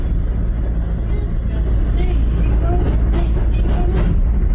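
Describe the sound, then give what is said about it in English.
A passing rush-hour train in the New York City subway tunnels, captured on a phone: a steady, heavy low rumble that stays loud and even for the full few seconds, with faint higher rattling and squeal flickers over it. “Well, we hear the train.”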